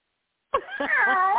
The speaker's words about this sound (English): I just had to bribe my cat with treats because he was over here sounding pathetic, like so pathetic. He was like, meow.